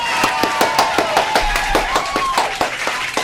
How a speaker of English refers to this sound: Everyone, clear, let's clap for him.